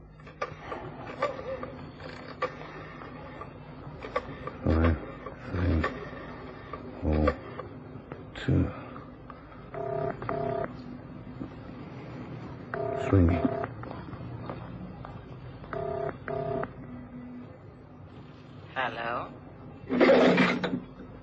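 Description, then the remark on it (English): A telephone number is dialed: a series of short, distinct beeping tones pressed one after another at uneven intervals, preceded by clunky handling knocks and followed by a brief rustle. “I've got a phone number somewhere in my diary here.”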